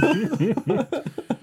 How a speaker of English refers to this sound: I coughed halfway through. No, we didn't. No, none of us heard that.